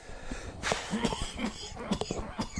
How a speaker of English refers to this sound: All right, I'm going to try to gather myself and stop coughing.